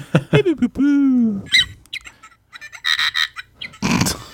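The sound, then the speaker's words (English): The R2-D2 robot droid, played from a soundboard as a page-turn cue, beeps and whistles in a quick burst of warbling, sliding tones, one long note dipping in pitch, followed by buzzy, chattering electronic bursts, loud and alone with no talking. “When it's time to turn the page, R2-D2 will beep like this.”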